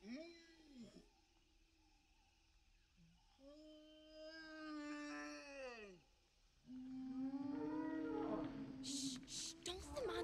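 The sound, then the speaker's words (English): Long, mournful whale calls rise and bend in pitch, several tonal moans and groans following one another, growing louder and denser toward the end with a few high clicks and squeals. “I can't believe I didn't buy the whale noises.”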